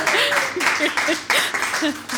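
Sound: audience applause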